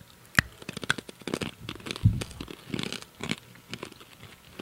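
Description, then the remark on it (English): Sharp, irregular crunches and cracks as hard cinnamon candies with chocolate centers, called chicken bones, are bitten and chewed, with brittle snapping bursts scattered over several seconds and no talking. “No, you got to bite them because they have chocolate in the center.”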